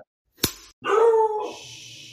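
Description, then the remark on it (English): A dog named Wyatt, a mascot, barks: one sharp, abrupt bark followed by a longer, drawn-out tonal bark that fades into a faint hiss. No one speaks. “The dog's answering.”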